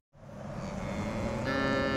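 A cow on the Caney Creek Ranch, about halfway between Houston and Dallas, Texas, lets out a long, steady moo during a hot, dry drought summer. It starts abruptly and holds loud and sustained for about two seconds, its low droning tone rich with harmonics and rising slightly in brightness toward the end.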